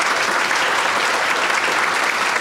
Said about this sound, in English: Would you give yourselves a great big round of applause for just being awesome?